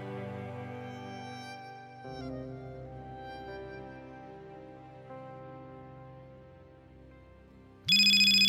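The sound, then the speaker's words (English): A phone vibrating on a kitchen counter plays its ringtone alone, a sustained electronic melody of shifting tones that ends in an abrupt, much louder and harsher buzzing burst. “She had a call. She jumped from her chair, pissing off a slumbering Samson, and dashed to her phone vibrating on the kitchen counter.”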